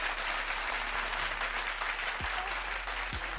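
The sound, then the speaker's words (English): A round of applause: many hands clapping in a dense, steady crackle that stays fairly loud and even for a few seconds, with no voices over it. “Yes, round of applause for my man.”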